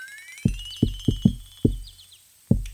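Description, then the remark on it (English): Six firm, loud knocks on a front door tap out the familiar 'shave and a haircut, two bits' rhythm, with a faint high whistling tone rising underneath. “I knock, you know. My signature knock.”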